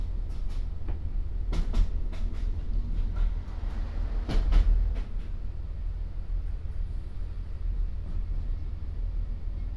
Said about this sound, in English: Is now approaching Shirehampton. Please take care as you step from the train to the platform.